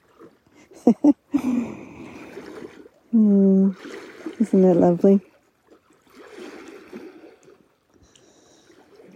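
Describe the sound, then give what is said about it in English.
Soft, steady trickling water runs in the background and grows quieter toward the end, while a voice speaks and laughs briefly over it. “I'm laughing because the water is just getting more and more quiet.”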